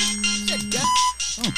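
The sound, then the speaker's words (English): A phone rings with a bright electronic tone: short, buzzy bursts and warbling, sliding pitches repeating quickly, fairly loud, with no voices over it. “Who's calling? Where's that phone?”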